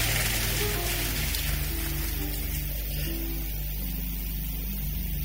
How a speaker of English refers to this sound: Oh, come on, give a big clap of praise to Jesus.